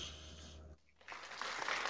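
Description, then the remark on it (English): Faint, half-hearted clapping from a small group for a contest winner, a thin patter of scattered claps that starts after a brief lull and carries on unevenly over a low background hum. “I mean, that's really a poor clap.”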